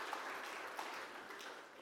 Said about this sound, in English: All right. That's where you applaud. Thank you.